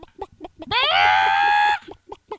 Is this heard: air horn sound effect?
no